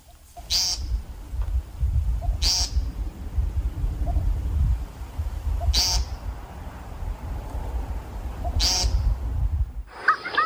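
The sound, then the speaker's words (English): An American woodcock in Shenandoah National Park, Virginia, about 20 feet away, gives four loud, buzzy, nasal peent calls spaced a few seconds apart over a steady low rumble of outdoor background noise. “I'm in the Shenandoah National Park in Virginia, and I'm standing out about 20 feet away from an American woodcock.”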